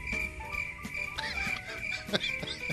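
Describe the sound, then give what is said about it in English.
Steady, high-pitched cricket chirping, played as a sound effect after a joke, drones continuously throughout, with faint low thumps and brief bursts of background noise beneath it. “You were waiting to play the crickets one, weren't you?”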